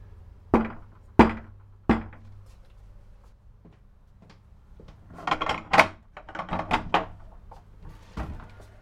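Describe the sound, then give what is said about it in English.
Three firm, evenly spaced knocks on a wooden door off a very old courtyard, then a pause before a burst of rattling and clunking like a latch and the door being opened. “I presume this is the right door. Let's see.”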